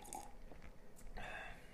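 Wet slurping noises made into a microphone, a few short sucking bursts followed by a longer, louder drawn-in slurp near the end, with no talking.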